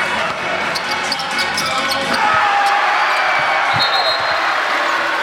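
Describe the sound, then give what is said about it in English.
A loud basketball arena crowd at the Fortress roars steadily as a player knocks through an alley-oop slam dunk, with sharp ball bounces and shoe squeaks cutting through the dense cheering. “Like, maybe we'll just be quiet here because you can put this sound over this, but listen to the crowd on this when he knocks it through.”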